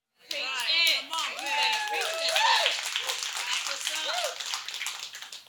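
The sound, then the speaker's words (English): An audience claps in a dense, steady patter for about five seconds, with excited voices and whoops rising and falling through the applause. “Half the people clapped, and half the people got nervous.”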